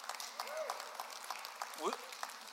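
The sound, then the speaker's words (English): An audience applauding, with a steady patter of many hands clapping and a couple of brief voices calling out or whooping over the clapping. “Yeah, you're allowed to clap.”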